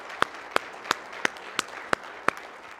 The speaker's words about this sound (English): Come on, let's give the Lord one more hand clap if you wouldn't mind, please.